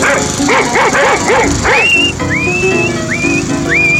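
A dog named Rover barks and yips in a quick burst of about five sharp, high calls while someone is mowing the lawn, followed by several rising whistle tones over a steady background.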